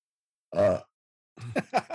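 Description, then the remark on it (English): A single short, throaty burp rises out of silence, loud, followed after a brief pause by a voice making a few choppy vocal sounds. “I was avoiding the burp, and so I had an awkward ending, and I couldn't avoid it.”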